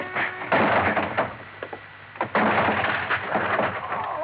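A locked office door is forced open with two heavy, loud bursts of banging and rattling, each followed by a stretch of scraping and creaking wood. No one speaks.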